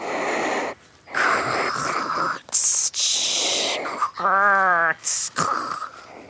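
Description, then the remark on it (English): A voice imitates a bettong's hiss with a series of breathy, noisy bursts and wheezy exhales, one ending in a short rising tonal squeal, separated by brief pauses. “Can you make the sound of a hissing betong?”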